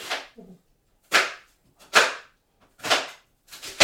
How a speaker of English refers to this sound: Right, just chopping. I don't have any knife skills, by the way.